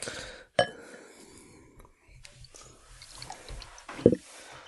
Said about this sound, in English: Here it is, the pour. Very important part of the drinking procedure.